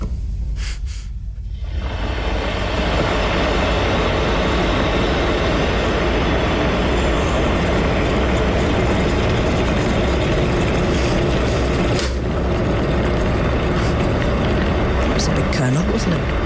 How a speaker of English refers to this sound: It's a kettle, you doilum.